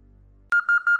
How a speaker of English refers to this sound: Megan sat up and silenced her alarm.